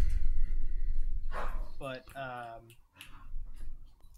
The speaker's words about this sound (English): But sorry, our dog is trying to attack our cat. No, it's fine. Well, in a sweet way, not in a mean way.